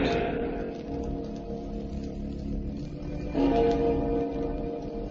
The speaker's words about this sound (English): remember to be with us again when death stretches out his bony hand and the clocks strike 12 for Murder at Midnight.